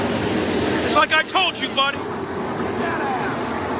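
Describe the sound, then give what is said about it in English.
Sprint car engines roar steadily during a 360 winged sprint car feature race, from a Saturday night Facebook live feed: a loud, dense rumble with a higher whine climbing near the end. Brief bursts of voices rise over the din partway through. “I did a live feed Saturday night of Tyler's 360 wing sprint car feature.”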